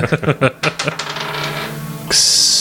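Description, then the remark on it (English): Small hard dice thrown off a table during a game clatter onto a surface, a quick burst of bright bounces that rattle and settle within about a second, followed by a steady hiss; the die lands on a 20. “Yeah, I'm just going to throw my dice off the table.”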